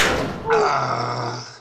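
A metal storage cage door slams shut with one loud clang, locking people inside the storage cage, then a sustained metallic ringing and low hum that slowly fade over the following second.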